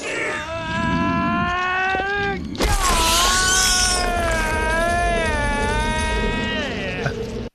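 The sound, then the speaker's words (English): A loud, drawn-out shriek from a film soundtrack, wavering and strained, lasting about seven seconds; after a brief dip it surges back harsher and rougher before cutting off abruptly. “So yeah, but then it has that, you heard that shriek.”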